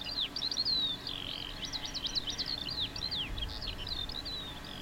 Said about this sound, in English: Birds.